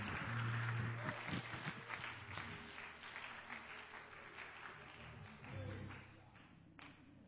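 An audience at an evening church service claps together in a dense, steady burst of applause, a hand clap of praise to the Lord and welcome for a preacher, loud at first and gradually thinning out, with a low hum and a few voices underneath.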